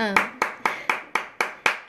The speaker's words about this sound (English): Yeah, applause for this kind woman, of a, yeah.